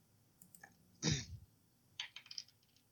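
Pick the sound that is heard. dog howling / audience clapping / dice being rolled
dice being rolled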